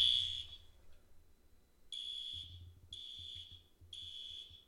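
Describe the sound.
A woman imitates a smoke alarm with four shrill, high-pitched beeps about a second apart, each held briefly, loud, with low rumbling noise underneath.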